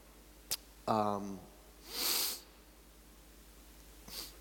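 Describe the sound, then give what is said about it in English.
A single sneeze during a church live stream: a short voiced gasp rising into a sharp, breathy burst, followed a couple of seconds later by a faint sniff against a quiet background. “I'm trying not to sneeze again.”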